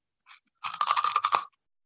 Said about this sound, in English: Don't bite into the microphone. We can all hear it. We don't want to hear you chewing.